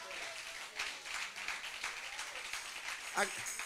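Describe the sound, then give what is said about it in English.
An audience gives God a hand clap, dense overlapping hand claps forming continuous applause, with a few voices calling out and a brief vocal exclamation near the end. “Come on, give God a good hand clap.”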